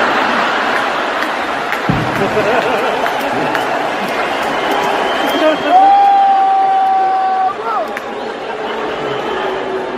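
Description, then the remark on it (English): A large crowd keeps up a steady, dense roar of booing and jeering for the whole stretch. Midway, a single sustained higher-pitched note rises above the din for about two seconds. “All those people are booing, and I'm just pointing out the obvious.”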